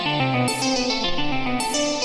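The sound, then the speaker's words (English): A harsh, gritty synthesizer tone with two distortion effects blended and turned up, playing sustained chords that shift pitch every half second or so, loud and dense with buzzing upper harmonics and bursts of bright noise. “And I can blend between my two distortions here. I can turn them up. You can hear them really kicking in.”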